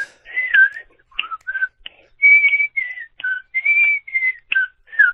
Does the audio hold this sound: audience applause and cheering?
no